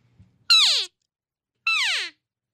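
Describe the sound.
Two short, high-pitched mewing cow calls blown by a woman on a game call, each starting sharply and sliding downward in pitch, separated by about a second of silence.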